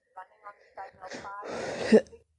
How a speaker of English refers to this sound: Sorry, cough.